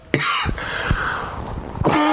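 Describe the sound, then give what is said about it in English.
A person coughs repeatedly in a harsh fit from a catch in the throat, several rough bursts in quick succession with brief gasps between them, loud with no talking. “I'm going to cough again.”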